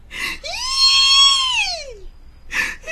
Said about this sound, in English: Suddenly, there was a loud shriek from Mama's room.